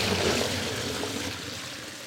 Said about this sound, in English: Once the water is at a boil, you start to see salt bloomed up at the top, and you see the crystals opening and spreading on the surface of the water and then falling down.